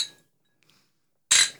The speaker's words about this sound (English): Go on, clink them up. Cheers.